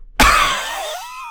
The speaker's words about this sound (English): Every time you coughed, your face has drained more and more of color, and now your face is completely white.